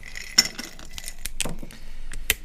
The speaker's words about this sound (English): Here, you can hear the safety seal being broken.